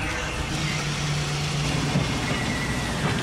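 A winch hauls an experimental green-mesh fishing net aboard the fishing boat Dolores Louise, a steady mechanical drone with a low engine hum and broad rushing noise, loud, continuous with no voices.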